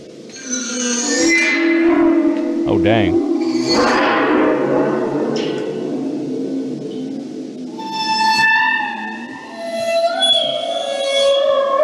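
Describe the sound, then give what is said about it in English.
Eerie waterphone tones: bowed metallic notes that swell, waver and slide in pitch, with shimmering high overtones ringing over a low drone. A man briefly exclaims early on. “Anyways, let's listen to what a water phone sounds like.”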